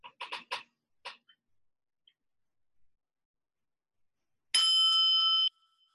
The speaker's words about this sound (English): I invite you now to close your eyes and focus on your breath as the bell leads us into a time of silent meditation.